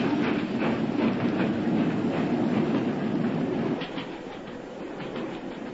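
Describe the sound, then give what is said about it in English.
A train rumbles steadily along the tracks, a loud continuous roar with faint rhythmic clatter of wheels, easing slightly quieter near the end. “Stop the train, I say!”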